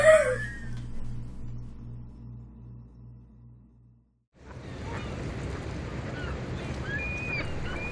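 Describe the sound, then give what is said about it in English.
A boat engine chugs in a steady low pulse and fades as the boat leaves an island, a rooster crowing briefly at the start; after a short silence, busy outdoor ambience with chirping birds takes over. “Gather up all your things and get on the only boat out of Numskull Island.”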